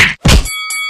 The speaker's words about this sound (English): Now ring that bell.